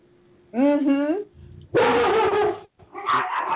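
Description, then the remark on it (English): Three dogs, one of them a small chihuahua, bark and yap in loud bursts, including the chihuahua's high-pitched yips, with brief pauses between the noisy outbursts. “The dogs would remind us. There's several. It sounds like a pack, but there's really only three dogs, one of whom is a neurotic little chihuahua up there.”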